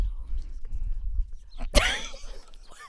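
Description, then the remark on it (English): A horse whinnies once, a sudden bright burst that trails off into a wavering, shaky call lasting about a second, over a low rumbling outdoor background. “That's why I get these horses, because these horses have to go with me and my mule.”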